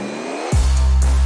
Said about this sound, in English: Are you ready? Ready when you are. Start your engine.